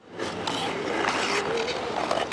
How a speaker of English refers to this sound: Ice skaters bundled up against the cold zip around an outdoor rink in front of Ottawa City Hall.